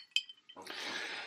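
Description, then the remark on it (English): A single bright, short glass clink from a toast, followed about half a second later by a steady, broad rushing noise. “Well, today I can say I'm officially divorced. Cheers.”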